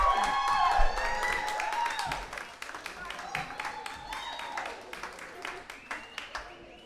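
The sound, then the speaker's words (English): An audience on the Songbirds Radio Hour applauds a vocal group after their performance, with dense, steady clapping that runs the whole stretch, mixed with high whoops and cheers early on before easing into softer, thinning claps. “Let's give another fantastic group another round of applause.”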